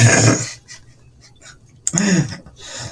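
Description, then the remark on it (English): Abrupt hiccups from a person: a breathy burst at the start, then a sharp, voiced hiccup a couple of seconds in, followed by a softer one, with quiet breathing between. “Oh man, I've got the hiccups.”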